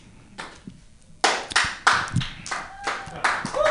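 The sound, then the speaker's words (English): Audience at a stand-up comedy show clapping in uneven bursts, building from scattered claps into several louder waves of applause that swell and fade over a few seconds, with faint voices mixed in. “You guys still with me? Yeah? Yeah, you are. Clap, damn it.”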